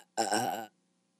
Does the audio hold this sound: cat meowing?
no